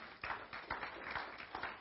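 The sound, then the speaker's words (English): An audience claps their hands together for the Lord, a dense, uneven patter of many overlapping claps that holds steady and fairly soft for the whole moment, with no one speaking. “You ought to give the Lord a hand clap for that.”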